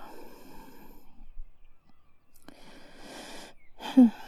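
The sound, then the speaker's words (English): Snoring: three raspy, wheezy breaths separated by brief pauses, the last one ending in a short throaty rattle. No one speaks. “Are you snoring? Stop it.”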